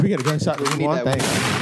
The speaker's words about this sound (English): Can we get a gunshot to move on?